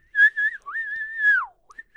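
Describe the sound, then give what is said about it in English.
A person whistles a brief, jaunty old-timey ragtime tune, the clear notes gliding and bending in a quick phrase with a short pause before a final held note. No one speaks. “Yeah, some whistle music.”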